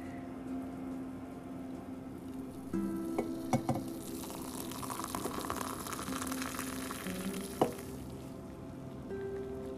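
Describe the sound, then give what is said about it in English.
A little stovetop teapot sizzles and hisses steadily on the stove, with a few sharp clicks and knocks breaking through and a low hum underneath; no one speaks. “At least this time I put the little teapot together right so that the water didn't come spurn out.”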